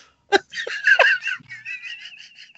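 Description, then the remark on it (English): A person imitates a bird squawk: a sharp burst, then a run of harsh, nasal cries that trail off into a thinner, wavering warble. No words are spoken. “No, you don't say squawk, squawk, Mr. …. You squawk.”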